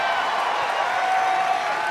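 Steady, dense audience applause for the Star Wars droids R2-D2 and BB-8 brought out on stage, a continuous wash of many hands clapping at an even loudness for about two seconds with no clear individual claps standing out.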